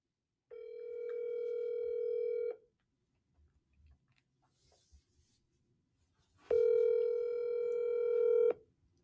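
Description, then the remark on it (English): A phone dial tone sounds twice as a call is placed: two loud, steady electronic tones about two seconds each, separated by a quiet pause with faint rustling. “Okay, so I'll let you call on my phone. Thank you so much. I will call.”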